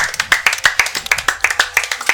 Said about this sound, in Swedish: Men extremt snabbt, en stor applåd till årets vinnare av Vem där?